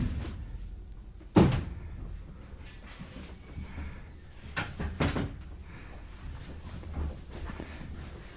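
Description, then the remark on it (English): A door swings shut with one sharp, solid thud, followed a few seconds later by two lighter knocks or latch clicks, all over a low, steady background rumble with no one talking. “Let's close the door.”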